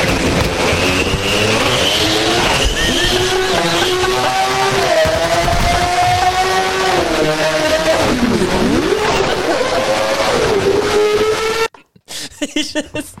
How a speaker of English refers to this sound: He just got a fucking F1 car.